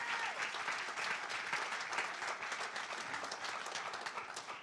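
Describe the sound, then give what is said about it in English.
A church audience gives a hand clap together after a prayer, before being seated: a dense, steady wash of many hands clapping, sustained and fairly loud for several seconds without pause. “And let's give him one more good hand clap together before we're seated.”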